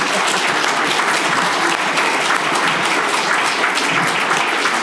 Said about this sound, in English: So you know what? Let's give a round of applause to yourself